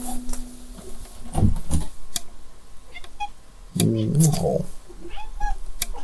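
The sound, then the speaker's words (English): A cat at a window, being collected from out of the window, with sharp taps and clicks scattered throughout and a couple of short vocal cries, one near the middle lasting under a second. “Is that my cat? Oh, you get the opportunity to join me in collecting my cat from out of the window.”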